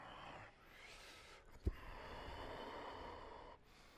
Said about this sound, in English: And now deep, rhythmic, audible breathing through your nose.